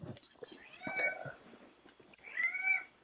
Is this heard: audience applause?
no